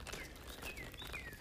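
bird calling

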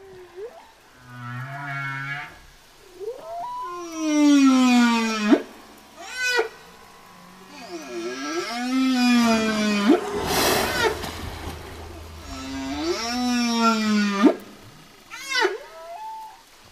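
blue whale call

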